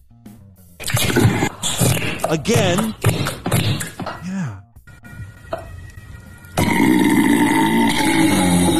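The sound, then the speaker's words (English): A run of loud, wet gurgling bursts of air from a woman's gaping anus around a dildo, with wobbling, uneven pitch, like something gasping and sputtering, followed by a steady rushing noise; a couple of short spoken words come through. “It's like her ass is gagging on this dildo and it's gasping for air.”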